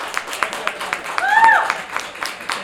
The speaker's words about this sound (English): So thank you again, both of you. And please give them a warm round of applause.